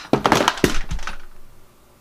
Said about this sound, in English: Whoops. I just knocked my microphone over. Everything's okay.